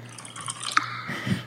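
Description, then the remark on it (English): Liquid dripping sounds in a song, a few distinct plops and drips over a steady low hum, moderately close and clear, with no talking. “Oh, I thought you were pouring a glass. Pussycat, drip, drip, drip, drip, pop, pop.”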